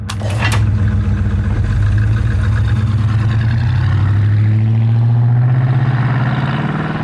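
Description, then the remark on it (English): A muscle car engine rumbles loudly through its exhaust, starting with a brief sharp burst, then a deep steady growl that climbs in pitch as it revs up, continuous. “Some muscle cars, like the 1970 GTO, had an option where you could pull a little lever and make a louder noise.”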